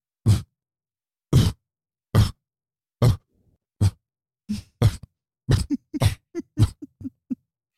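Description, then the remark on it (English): A dog's grumbling noise, made while lying by a window facing the street when someone walks or a car drives by: a series of short, gruff huffs and low grunts, slow and spaced at first, then coming quicker and more voiced toward the end, with no talking. “And during the day, if anything happens on the street, if anybody's walking or a car drives by or a butterfly lands on a leaf, he lays there and he makes this noise.”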